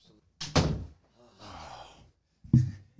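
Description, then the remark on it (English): A door shuts with a solid thunk in a studio, then a second heavy knock follows a couple of seconds later, with a soft breathy exhale in between. “Watch your step, watch your head. I'll get the door.”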